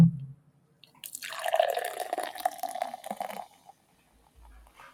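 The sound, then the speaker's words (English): A key lime beer from Half Barrel Project brewery in Tampa pours steadily into a glass for about two seconds, a frothy gurgle whose tone shifts as the glass fills, then stops abruptly. A soft thump precedes it and a low hum follows. “That was a phenomenal pour.”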